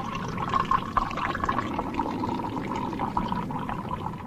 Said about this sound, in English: On the incoming plane, Ambassador Spender has fallen asleep and awakens to the sound of liquid pouring.